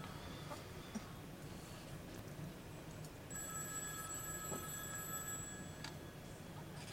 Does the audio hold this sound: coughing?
no